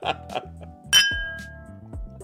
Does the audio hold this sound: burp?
no